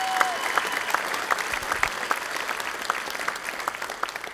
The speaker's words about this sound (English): Can we just give a hand clap to Jesus for what he did?